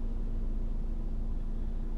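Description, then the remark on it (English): A steady, heavy engine rumble with a low droning hum of buses passing on a street, loud, with no voices. “Buses.”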